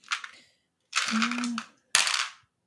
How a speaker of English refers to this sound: Should I roll my own dice, or are we using a dice roller? That's fine. Just roll your own dice.